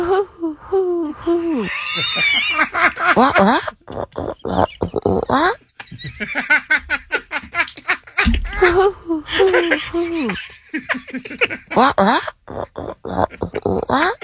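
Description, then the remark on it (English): Human voices imitate owl mating calls with warbling, whinny-like hoots and squeals. The bursts come in irregular runs, broken by breathy gasps and short pauses, loud. “Ladies and gentlemen, we have never done this before, but here are the mating noises of an owl.”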